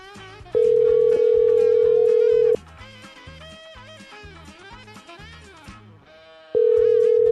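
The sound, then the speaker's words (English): A loud, steady telephone dial tone sounds as a call is placed, holding one even pitch for about two seconds, cutting out while background music plays on, then returning near the end. “But we're going to call Mrs. Mackey.”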